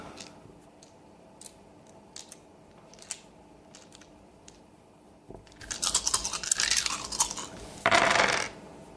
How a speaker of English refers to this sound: So you're just going to make your humanity roll this time. Okay. So it's 7 dice. Mm. Difficulty 8.